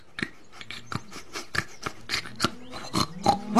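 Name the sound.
pig oinking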